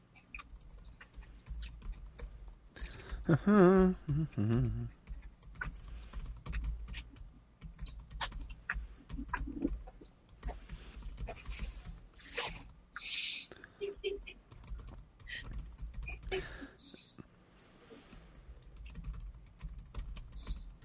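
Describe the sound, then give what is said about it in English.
Rapid, irregular clicking of computer keyboard keys being typed, with brief pauses between bursts, a short harmonic vocal sound early on and faint background murmur. “I'm typing something real quick.”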